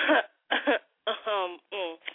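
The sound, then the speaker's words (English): A person clears their throat in four quick, voiced bursts, fairly loud, with a narrow, slightly muffled tone and short pauses between each rasp. “No, I don't think y'all hear me, so let me clear my throat.”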